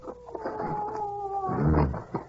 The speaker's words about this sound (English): Tell that dog to shut up, will you?